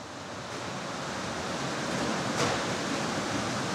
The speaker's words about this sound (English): unloading dishes from a huge 30-foot-long conveyor belt-style machine